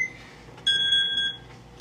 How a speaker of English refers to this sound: Oh, sorry, that's my ringtone. Gotta take this.